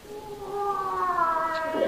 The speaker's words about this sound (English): What was that? Oh, it's all right, it's all right. It's only old Mother Smead's cat after the nightingale. That's the first bit of use that cat's been.